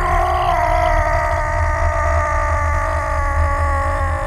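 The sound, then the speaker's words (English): A man growls savagely like an animal in fear while facing a bear, a loud, rough, low guttural snarl held steadily for about four seconds with no words spoken. “He too growled savagely, terribly, voicing the fear that is to life germane and that lies twisted about life's deepest roots.”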